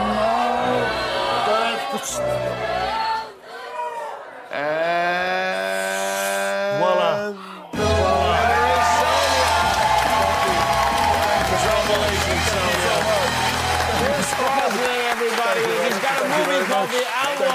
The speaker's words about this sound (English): Give to whomever you feel is the winner here. All right. The audience is now shouting out which one they like the best.